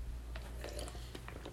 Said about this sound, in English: Sorry, I'm drinking water. My throat is not used to podcasting.